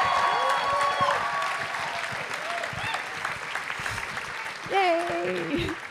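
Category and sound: crowd, audience cheering and applause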